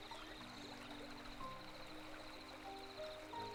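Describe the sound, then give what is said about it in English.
Steady, gentle wash of flowing stream water fills the scene without pause, a soft continuous babble with faint high tones drifting over it and no voices. “As the water keeps going, I now see something out the corner of my eye moving.”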